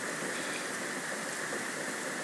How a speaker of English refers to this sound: Listening to the sound of the rain is soothing to so many, and I enjoy it myself. There's some healing energy that comes with our relationship to water, and it's a clearing and cleaning energy.